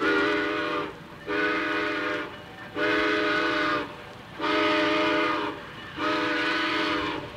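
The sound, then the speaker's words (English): A train whistle sounds five long, evenly spaced blasts, loud, over a steady low rumble as a northbound train with a refrigerated boxcar pulls out of the station. No voices are heard. “Hurry up, Frosty. The train is pulling out.”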